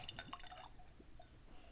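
A quick, faint pour of whiskey from a small sample bottle into a glass, with soft splashing and gurgling trickles for about half a second before fading into quiet room tone.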